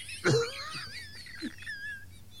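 A sudden gasp breaks the quiet, a sharp intake of breath trailing into a thin, wheezy whistle that fades over a couple of seconds. No one speaks.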